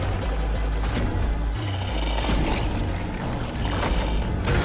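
Heavy, wet footsteps made as a monster's walk sound effect slog through mud in a grassless patch of dirt in a backyard, each slow step a deep thud with squelching, sloshing texture over a constant low rumble. No voices are heard.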